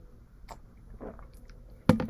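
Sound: drinking water and swallowing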